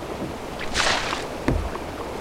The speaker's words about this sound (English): Under those bushes, my dinghy. Help me pull it out and paddle it across the river. Pull!